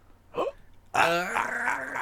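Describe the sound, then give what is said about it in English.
A person imitates a dolphin with a brief squeak, then a loud, strained, high-pitched squealing call held for about a second, with no talking. “I can't do a dolphin noise. That was my impression.”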